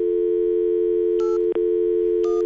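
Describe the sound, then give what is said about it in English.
A steady electronic telephone tone for a disconnected number hums unbroken over a phone line, heard when calling a student's phone number on file at Robeson High School, interrupted by two short, higher beeps and a faint click midway. No voices, just the line's tone. “Families move, or their phones get disconnected, or sometimes they don't want the school to be able to call.”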